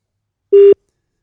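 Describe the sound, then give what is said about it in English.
A single short burst of a steady, mid-pitched telephone ringing tone on an outgoing call to Bangkok, Thailand, heard alone and fairly loud, with silence before and after. “Great, it's ringing. That's a good start.”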